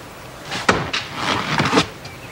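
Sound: car door closing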